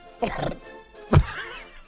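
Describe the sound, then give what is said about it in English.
A single sneeze: a short voiced intake rising into a sharp, loud, explosive burst about a second later, then quiet. No one speaks. “Bless you.”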